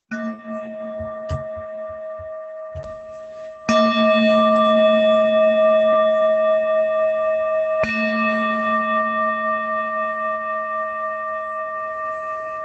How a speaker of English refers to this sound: But I'm going to pause and I'm going to bring our little bell back for anybody who's still on the call.